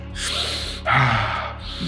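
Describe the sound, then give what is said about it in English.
Two sharp, forceful breaths in quick succession, a quick inhale followed by a louder rushing exhale, loud with no talking, as part of cyclical breathwork. “And when we're breathing in a cyclical breathwork.”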